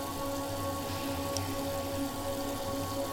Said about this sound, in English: That's when I heard it. The kitchen faucet was on.